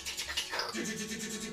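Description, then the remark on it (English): A voice imitates cat claws scrabbling on a hard hallway floor as cats run up a wall: a quick, rhythmic run of hissy scratching bursts, steady and fairly loud for just over a second. “So, you know, I would just stand in the middle of the hallway, have them run into one open area, have them run them back, and I would quickly go up a wall, and all you would hear, since it's harder floor, is...”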